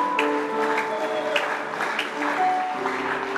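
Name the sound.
audience clapping weakly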